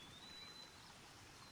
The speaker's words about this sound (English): As the birds and the water rush by.